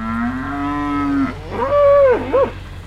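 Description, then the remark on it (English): A few dozen cattle on a farm moo loudly, excited as a man pulls up with bread: one long, low, steady bellow followed by a second, wavering call that rises and dips. There is no talking. “Today, his farm is a few dozen cattle who are very excited to see him pull up with bread.”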